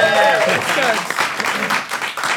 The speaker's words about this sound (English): Very good. Very good. I think you can have a clap. There you go.